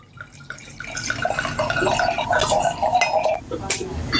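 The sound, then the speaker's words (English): Red wine pours steadily into glasses for a few seconds, a bright gurgling trickle with rising pitch, over faint room noise. “Pouring the glasses.”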